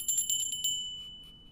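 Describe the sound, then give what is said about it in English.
A small bright brass service bell, the kind used to call a maid, rings several times in quick succession, its clear metallic tone sustaining and fading out over the last second. Fairly loud, with no voices. “This one is a brass bell, except it's like one of those where you want like a maid, and you're just like, maid?”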